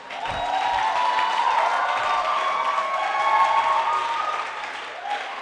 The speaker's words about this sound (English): Let's give a clap offering to our beloved doctor.